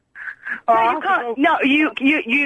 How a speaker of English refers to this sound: He's gone. He just put the phone down. Oh, every time I speak to the boy, he puts the phone down.